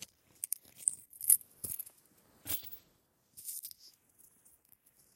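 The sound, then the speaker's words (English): Keys, including two work keys kept around the neck, jingle and clink in several short, bright metallic bursts as they are taken off the neck, with a brief pause before a final softer rattle. No one speaks. “You take the keys off my neck.”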